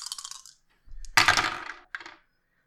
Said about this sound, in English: I'm going to take a hype die. So I'm going to roll 3. Away we go.